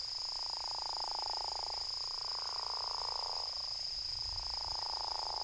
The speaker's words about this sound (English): It was the croak of what was then called the Mississippi gopher frog, and he couldn't have known it then, but that was one of the last times anyone ever heard the frog in Louisiana.